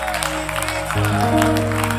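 An audience claps hands together in praise to the Lord in a dense, steady patter over sustained organ-like musical tones that step up in pitch about halfway through.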